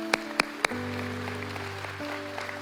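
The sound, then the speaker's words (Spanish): An audience applauds the Lord: three sharp, evenly spaced claps stand out at the start, then a softer wash of clapping continues beneath a sustained, steady keyboard chord. “Sí, un aplauso al Señor.”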